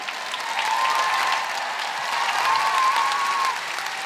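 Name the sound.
audience applause and cheering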